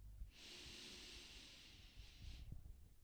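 A long, steady breath drawn in through the nose, breathing in for a count of ten, a soft airy hiss lasting about two seconds, with faint low rustling underneath and no talking.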